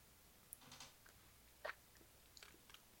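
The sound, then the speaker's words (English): A quiet sip from a fizzy cocktail made with lemony bubbly water, with a few soft wet mouth clicks and smacks spaced out over a few seconds, ending in a brief louder knock. Nobody speaks. “Well, I'm going to take a sip of this thing.”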